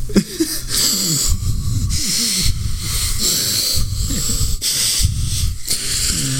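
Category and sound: vocal imitation, imitated heavy wheezing breathing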